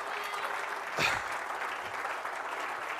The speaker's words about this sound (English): Oh, I wish you'd clap your hands right now.